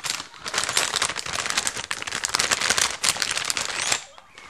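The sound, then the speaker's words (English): A bag is crumpled up, giving a steady stream of loud, sharp crinkling and crackling for about four seconds before it quiets at the end. “I'm gonna crumble up a bag.”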